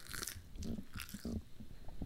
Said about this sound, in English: They're crunchy. I think I overcooked them in the air fryer.